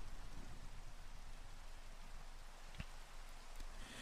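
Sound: rain falling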